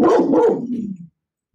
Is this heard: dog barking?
yes